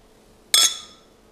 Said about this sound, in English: That toast was ineffective because this glass is plastic.